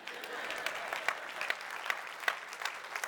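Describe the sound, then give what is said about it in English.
A church audience applauds God steadily, a dense patter of many hands clapping at moderate loudness with occasional sharper claps standing out, and no voices over it. “It's like awkward as a pastor. It's like, do I let them clap or do?”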